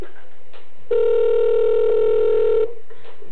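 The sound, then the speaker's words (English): A phone line sounds a single steady ringing tone, loud and even for about two seconds, with only quiet line noise before and after it, as a call is placed back to a taxi company. “Damn it, call her back.”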